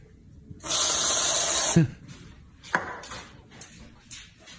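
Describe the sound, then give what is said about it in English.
A whipped cream aerosol can, used for a dog that loves whipped cream, gives a loud, steady hissing spray lasting about a second, followed by a short clatter and then quieter scattered hisses and soft background noise. “The dog who loves whipped cream, watch this. He heard the can open, right?”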